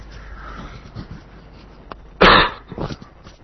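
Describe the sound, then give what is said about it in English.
A sharp cough bursts out over faint background hiss, followed a moment later by a second, softer cough. No one speaks. “Is that …? I hear coughing.”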